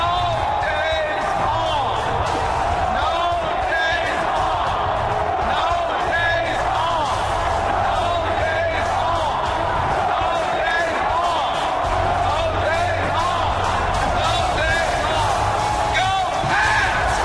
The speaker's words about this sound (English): That's Bill Belichick chanting no days off to millions of people who took the day off to go watch a victory celebration, right? All of those people are not in their offices. They are lining the streets of Boston, taking the day off